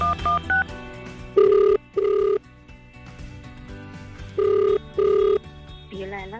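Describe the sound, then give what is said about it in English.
A quick series of dialing tones, then an outgoing call's ringback tone buzzing twice in a pair, pausing, and repeating, loud and steady over faint music underneath. “So let's see if we can get a hold of Mbuso's mom, Beulah. Up to the phones, let's see.”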